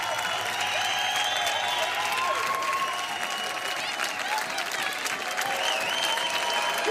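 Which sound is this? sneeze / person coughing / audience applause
audience applause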